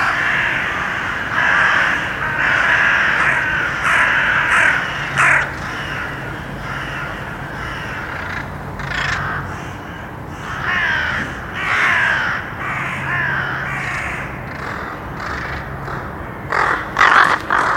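Many crows caw repeatedly in harsh, overlapping calls, loud, forming a continuous noisy chorus with bursts of sharper cries throughout.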